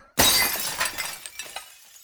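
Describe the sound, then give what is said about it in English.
A sudden loud crash of apartment window glass breaking as a brick is hurled through it, followed by a second or so of falling shards clinking and tinkling down, with no voices. “This was a different brick.”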